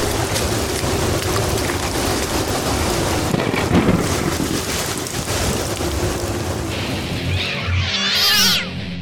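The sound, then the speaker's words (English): Steady, heavy rain hisses throughout a thunderstorm, with low rumbling thunder rolling underneath. A cat gives a brief high-pitched yowl near the end. “Here comes the weather again.”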